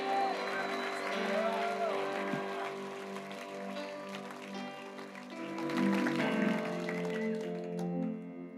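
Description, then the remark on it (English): A church audience claps and shouts to the Lord together at the preacher's call, a steady, dense wash of applause and raised voices over sustained musical tones, swelling briefly louder near the end. “If you believe that, give the Lord a clap and a shout.”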